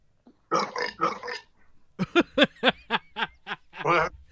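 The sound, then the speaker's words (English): Two raspy burps come back to back, fairly loud, followed by a string of short rhythmic laughing bursts. “However, the phone worked, it made you double burp.”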